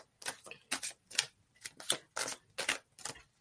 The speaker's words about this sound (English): Oh, I like shuffle like this. I shuffle differently for everything, for each person. It's a different experience.